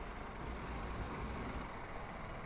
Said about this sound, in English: Big gasoline truck.